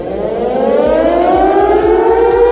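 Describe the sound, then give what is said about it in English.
A loud, steady alarm siren wails on its own, its tone gradually rising in pitch over a couple of seconds, with a low rhythmic rumble pulsing underneath. “Sound the alarm!”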